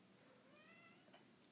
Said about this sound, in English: Wow, I just heard a cat meow.